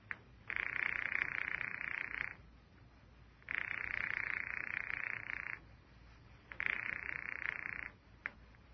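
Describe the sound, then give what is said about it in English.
A telephone call to an office rings three times in a steady rhythm, each buzzy, trilling ring lasting about two seconds with brief pauses between, heard thinly over the phone line. “I am ringing Murray Hill 40599.”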